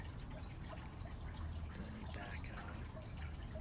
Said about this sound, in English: See, this is a creek.